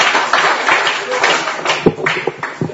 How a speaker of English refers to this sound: Didn't he do well this morning? Yeah. All right, round of applause.